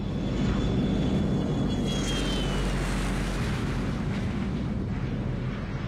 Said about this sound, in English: The Gulfstream 4 is typically a business jet, but this one is reconfigured.